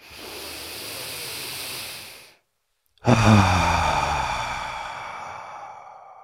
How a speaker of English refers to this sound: So feel that expansion and contraction. Inhale through your nose, belly rises. Fill the balloon behind your belly button. Exhale, collapse the balloon. Two more just like that.